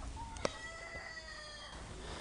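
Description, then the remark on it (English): A bantam cockerel crows once, a thin, high-pitched call drawn out over more than a second, with a brief sharp click near the start and a soft background hiss. “So we've got a whole bunch of bantam cockerels kicking around at the moment”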